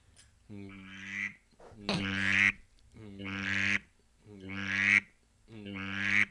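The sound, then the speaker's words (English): A drake mallard gives five drawn-out, raspy quacks in a steady rhythm, each rising in intensity and separated by short pauses. The calls are clear, with no other sounds. “No, it's a Drake mallard.”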